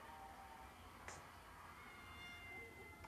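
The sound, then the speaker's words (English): A cat meows softly a couple of times as it is fed cut-up pork, the thin drawn-out cries faint against a low steady background hum, with no talking. “Feeding the cat.”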